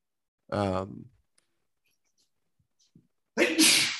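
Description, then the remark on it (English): A loud sneeze: a drawn-out voiced wind-up, a pause of a few seconds, then a sharp, breathy explosive burst. No one speaks. “Bless you.”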